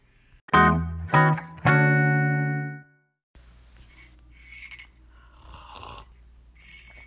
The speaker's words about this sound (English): Oh, sorry, just had to take like a sip of my matcha break.